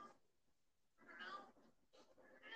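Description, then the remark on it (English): A cat meows two or three times in short, whiny bursts, moderately loud, with brief pauses between the calls. “Oh, yes, cat.”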